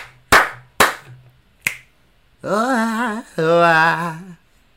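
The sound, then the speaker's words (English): Two sharp claps are followed by a single crisp finger snap, then a voice buzzes two long, wavering trumpet-like notes with the mouth in imitation of a trumpet. “So I give it three claps, a snap, and a and two.”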